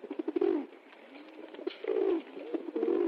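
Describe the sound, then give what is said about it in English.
A pigeon coos in low, throaty bursts, three rolling phrases separated by short pauses, with no voices around it. “We went to the courthouse one night with a pigeon and an egg.”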